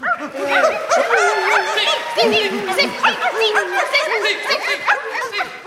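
animal, many dogs barking

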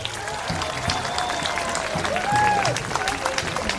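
crowd, crowd cheering and celebrating

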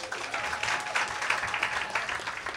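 crowd, round of applause

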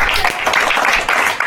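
crowd, clapping

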